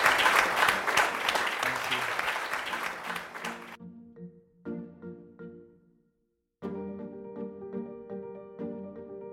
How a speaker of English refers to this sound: Let's give the panel a round of applause.